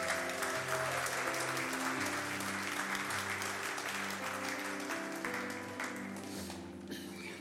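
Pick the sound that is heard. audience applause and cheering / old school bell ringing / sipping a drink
audience applause and cheering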